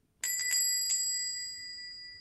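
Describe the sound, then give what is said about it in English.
A shop door bell jingles with a quick cluster of three or four bright strikes, then its clear metallic tone rings on and slowly fades. Fairly loud, with no voices. “The bell on the door jingled again.”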